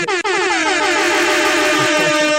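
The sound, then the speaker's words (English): Several air horns blare at once in a loud, sustained, overlapping chorus of clashing tones, starting abruptly after a brief blip and holding steady without a break. “Multiple air horns.”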